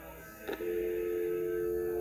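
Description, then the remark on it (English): A brief click as a phone call in a movie is hung up, then a steady, unbroken telephone dial tone hums on at an even level through the rest of the moment, with no voices present. “Followed, of course, by the dial tone, and it ends.”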